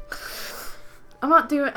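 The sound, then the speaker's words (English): A person imitates the snoring of someone asleep in bed: a raspy, breathy inhale followed by a short pause and a louder, voiced, throaty snort on the exhale. “That's snoring noises.”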